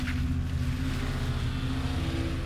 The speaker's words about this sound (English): The killer nodded, got into the car, backed out of the garage, and sped off.